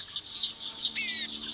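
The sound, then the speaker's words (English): A northern parula high up in a cypress at Corkscrew, a National Audubon Society sanctuary, on a warm, sunny winter morning gives a single bright, buzzy high call, loud, over a steady thin drone of insects humming in the background. “Higher up, in a cypress, a northern parula, resplendent in blue, auburn, and gold, calls repeatedly.”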